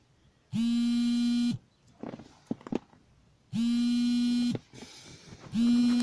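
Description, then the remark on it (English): A phone vibrates with an incoming call, giving three loud, steady low buzzing pulses about a second long each, separated by short gaps with faint clicks and rustling. “I should have put this on no vibrate before I started recording.”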